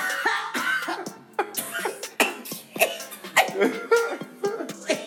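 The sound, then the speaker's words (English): Repeated harsh coughing fits, loud, with sputtering, choking gasps between bursts, from someone who just took a shot of a drink. No speech. “I had to do a quick shot break. Right. A shot and choke break. And cough.”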